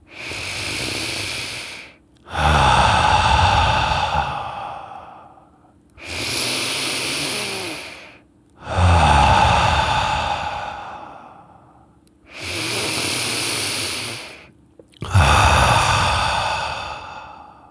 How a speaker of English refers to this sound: And so I'd like you to take three deep breaths with me.